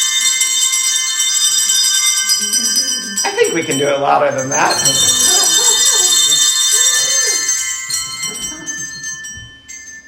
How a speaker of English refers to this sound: In celebration of this great mercy, I invite you to take those bells and celebrate.